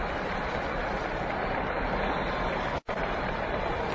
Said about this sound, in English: And it's Lou Gehrig, ladies and gentlemen, who's captain of the American League All-Star team, standing out there at the plate, and the crowd is giving him a tremendous ovation. Just listen for a moment.